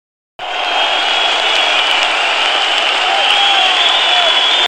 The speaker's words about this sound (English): Leashes his Velociraptors on these superheroes, and the crowd goes wild.